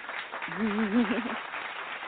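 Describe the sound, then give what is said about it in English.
Steady, dense applause fills the short stretch, many hands clapping at once at moderate loudness, with a brief voiced whoop rising over it near the middle. “Yes, we're going to throw some claps on it.”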